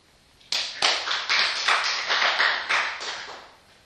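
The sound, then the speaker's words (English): A steady run of hand claps, roughly ten sharp, bright smacks at an even pace over about three seconds, fairly loud with no voices, then fading out. “Clap your hands.”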